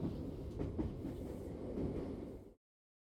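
A train carriage rumbles steadily along the rails, with clickety-clack wheel beats tapping through the continuous low roar, fairly loud, until the sound cuts off abruptly.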